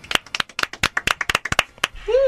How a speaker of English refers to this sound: Let's give Mark and his associates a round of applause, everybody.